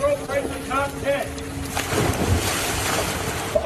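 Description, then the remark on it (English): Brief voices, then a tourist's minivan, driven by following GPS, plows into ocean water at a boat ramp in Hawaii with a loud, sustained rush of churning, splashing surf, wind buffeting the microphone of a bystander's phone. “A tourist in Hawaii followed her GPS right into the ocean. Here's audio from a bystander's phone.”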